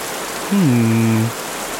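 Steady rain patters on a surface in a constant, even hiss, with a brief low humming tone that dips in pitch midway through before fading back into the rainfall.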